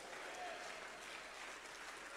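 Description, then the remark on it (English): An audience claps hands in a dense, continuous wash of applause that stays steady and fairly loud throughout, with indistinct voices blended into the clapping, as a preacher calls on them to jump to their feet, clap their hands and shout that he saved them from sin. “Come on, if he's ever set you free from sin, jump to your feet, clap your hands, and shout, he saved me from my sin.”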